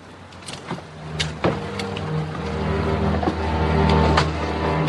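A pilot fires up a helicopter from the cockpit: the engine starts with a low mechanical whine that builds steadily into a droning hum, punctuated by a few sharp clicks and clanks early on. No one speaks.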